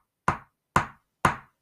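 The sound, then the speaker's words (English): Three crisp, evenly spaced ticks of a clock ticking very fast in a film scene, each a sharp knock-like click with a short decay, about half a second apart, with nothing else around them. “Like the clock ticking very fast.”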